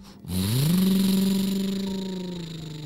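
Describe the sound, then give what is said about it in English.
A truck engine starts up and revs, its pitch climbing to a steady roar, then holds there and slowly fades slightly as the vehicle pulls away. No voices are heard. “They were able to drive the truck back safely to Frankie's house.”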